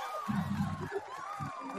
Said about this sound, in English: Cue the applause.